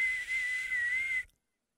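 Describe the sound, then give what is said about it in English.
A person whistles one steady, high note for just over a second, imitating steam hissing out of a volcano, with a breathy airy edge before it cuts off into silence. “Let the steam out. I don't know. Again, I'm no doctor, so what do I know about volcanoes? We were about to die.”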